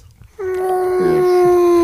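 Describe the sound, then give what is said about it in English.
A person imitates a whale call with one long, steady, sustained vocal tone that swells slightly and holds its pitch, sounding loud and moaning, almost like a howl. “They got whales. That's I not how a whale sails? How's he sound”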